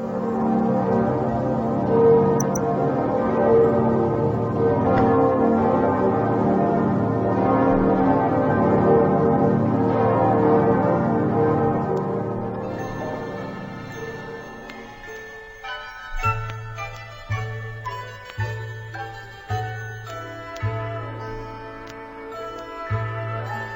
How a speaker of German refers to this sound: Das alte Geläut der Kaiser-Wilhelm-Gedächtniskirche zu Berlin.